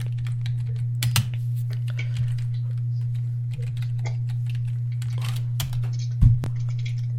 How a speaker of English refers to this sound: I'm typing Lars Sullivan.